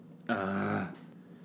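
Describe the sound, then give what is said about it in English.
A single meow from a cat called Ghost Cat, loud, a drawn-out harmonic cry lasting just over half a second before fading into quiet. “I think ghost cat wants a treat.”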